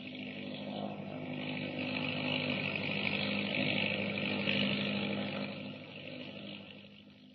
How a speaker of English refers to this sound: They're getting away in an autogyro. Look, up there.